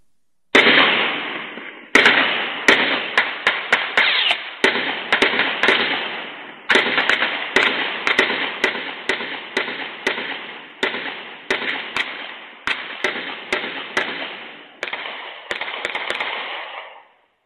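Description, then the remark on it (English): A long, loud volley of gunfire played from a video of a shooting, dozens of sharp cracking shots in rapid, uneven bursts, each echoing slightly, continuing almost without pause for over fifteen seconds with no voices. “That was the first gunshot.”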